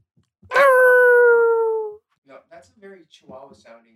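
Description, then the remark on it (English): A small dog, Rocky, on his birthday, lets out one loud, drawn-out howling whine that slowly drops in pitch over about a second and a half, followed by a person talking. “That sounded very chihuahua-y.”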